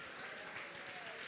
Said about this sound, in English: Come on, jump to your feet just for a minute. Clap your hands and just give Him praise for His mercy.